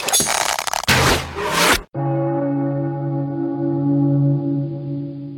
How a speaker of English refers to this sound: I will try and hit that clock tower bell or whatever it was and take us into spoilers.